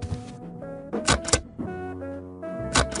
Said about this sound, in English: It's a hole punch. Mind if I use your hole punch? Knock yourself out.